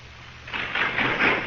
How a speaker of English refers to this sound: A railroad car clatters through Pennsylvania's coal fields almost a century ago.